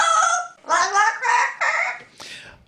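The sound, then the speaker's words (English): A parrot squawks the talking phrase "Polly want a cracker" in a shrill, raspy voice, five or so clipped syllables in quick succession, fairly loud, with no other sounds around it. “it was a parrot saying, "Polly, want a cracker?"”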